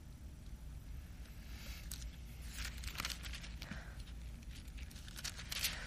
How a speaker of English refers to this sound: By the way, I love hearing the pages turn. That's awesome. You're getting a good workout here, going to different passages.